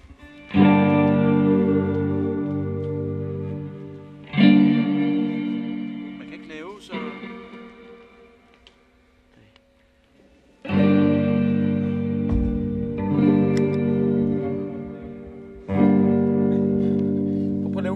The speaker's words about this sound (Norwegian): Så jeg kan høre ekkoet. Det er heller ikke særlig meget rum, den giver den her, hva'?